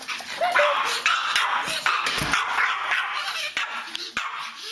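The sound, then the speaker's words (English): Boo, a small Pomeranian dog, yips and barks in quick, high-pitched bursts, close and fairly loud, with some whimpering mixed into a busy, noisy background. “She said, take, for instance, Boo the Pomeranian.”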